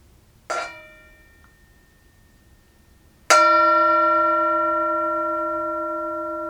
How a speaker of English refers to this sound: Even Sarah found one Christmas that she could no longer hear its sweet sound. Though I've grown old, the bell still rings for me.